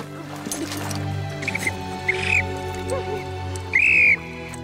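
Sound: whistle blowing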